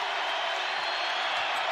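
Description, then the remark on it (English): A crowd in an arena at a basketball game applauds steadily as player Colby checks out of the game, a dense, even wash of clapping that holds at the same level for the whole stretch without a break or any voice standing out. “Colby checks out to a nice applause.”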